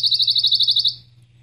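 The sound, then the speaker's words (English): A pine warbler sings one rapid, even trill of about a dozen quick notes on a steady pitch, clear, lasting under a second over a faint low hum. “So one of the new ones that I love the song, I'm going to see if we can hear this, is the pine warbler.”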